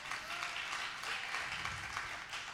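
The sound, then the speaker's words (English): A church audience applauding in praise to God, a steady dense wash of many hands clapping at once, sustained and even in loudness for the whole stretch with no voices standing out. “Come on, clap your hands.”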